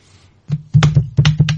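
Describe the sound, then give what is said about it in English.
A quick flurry of computer keyboard typing: several loud clusters of clacking keystrokes after a brief quiet start, with no voices. “Who are you typing? I'm not typing.”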